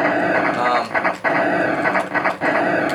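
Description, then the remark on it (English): A retro Atari video game laser fires in a rapid, buzzy stutter that resembles machine-gun fire. Loud, harsh electronic bursts repeat steadily for about three seconds, with a few brief dips between volleys. “The laser that kind of sounds a little bit like a machine gun.”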